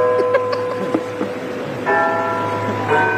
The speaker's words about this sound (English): but there was like this clock tower or something, some bell going off in the background, and you couldn't hear anything he was saying.